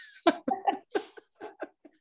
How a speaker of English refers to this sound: Mine do that sometimes. I have two dogs here.